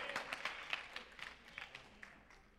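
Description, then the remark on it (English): A church audience clapping together during a sermon, a soft, steady patter of many overlapping hand claps with a few sharper claps standing out, and no one talking over it. “Y'all got to cut all that clapping out.”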